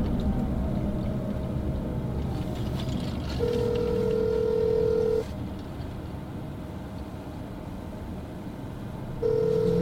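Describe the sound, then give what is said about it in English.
A phone's ringback tone sounds twice over steady road rumble from inside a moving Uber headed to the airport: one ring of about two seconds, then a second that cuts off at the end. No one speaks. “Again, I want to make one phone call only because I owe phone calls.”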